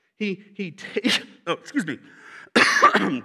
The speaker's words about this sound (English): Still lingering a little bit, you know what I mean? I can't quite shake this cough.